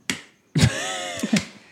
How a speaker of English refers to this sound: Everybody clap your hands. I do like a casual slow clap.